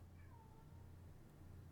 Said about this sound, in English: My cat's yelling. I'm sorry.